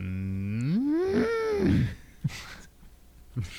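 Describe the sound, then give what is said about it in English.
A single loud, drawn-out cow moo rising and then falling in pitch, followed by a couple of brief low thumps and quiet background noise. “We asked for technical, cow, in honor of this day, noises.”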